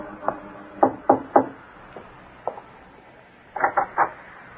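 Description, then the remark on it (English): A young woman knocks on the door of an artist's studio up four flights of stairs in Greenwich Village, New York, on a spring evening: a firm group of three raps, a couple of softer taps, then another quick set of three. The knocks sound clear, with no voices. “In the early evening of a bright spring day, a young lady climbed the four flights of stairs to the studio of a famous young artist in Greenwich Village and knocked.”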